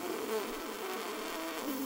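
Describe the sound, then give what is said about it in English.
A steady, nasal buzz of lips vibrating into a large brass mouthpiece, about four times the size of a trumpet mouthpiece, sustained for about two seconds with a slight wavering pitch, sounding much like an insect's drone. “You blow and you vibrate your lips while you're blowing. That's what produces the sound.”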